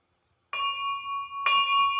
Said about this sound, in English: So anyways, once again, we got the bell.